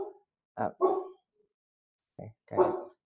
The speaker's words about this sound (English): My dogs are barking. I'm sorry.